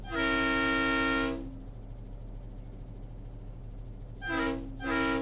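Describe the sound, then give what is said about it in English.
A train horn sounds one long, loud blast, then two short blasts after a pause, over the steady low rumble of an idling locomotive engine; a refurbished train at an industrial park rail facility that moves product from truck to rail. “a train to help move product from truck to rail and around the facility”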